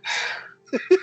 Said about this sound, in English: It's been a long day. First it has been a long day. He's already rubbing his eyes and yawning over here. He's ready for his nighttime sleep.